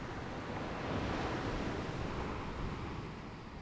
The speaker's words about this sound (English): why the ocean sounds? Why the beach?